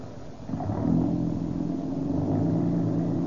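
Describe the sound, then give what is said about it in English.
An old car running on Rio Grande gasoline hums steadily while driving, a low continuous rumble that swells slightly after the first half second and holds at a moderate level. “This old car's got a lot of pep.”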